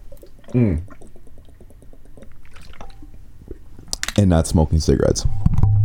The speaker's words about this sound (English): Now I'm going to do a glug glug into the mic like I always do. Don't forget to drink your water.